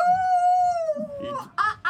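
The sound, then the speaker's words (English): A person howls like a wolf: one long, steady, loud vocal tone that sags slightly in pitch before breaking off into brief rough vocal noises and a short, sharp final cry. “What, are you raised by wolves?”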